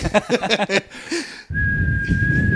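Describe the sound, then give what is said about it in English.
After a brief burst of voice-like sounds, a personal alarm whistle is blown in one long, steady, shrill blast with breathy noise, fairly loud for over a second. “Well, why don't you blow your hypothetical rape whistle?”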